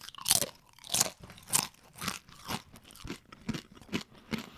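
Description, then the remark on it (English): Crisp crunching of Zach's Mighty tortilla chips being chewed, with about ten sharp bites in a steady rhythm, the first few loudest and brightest, and no talking. “Can you hear that? Not only are these chips sturdy and crunchy, they're absolutely delicious.”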